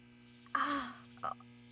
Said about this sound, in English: What is that? What's that noise? It's like a buzzing? It's the lights. You're hearing the stadium lights.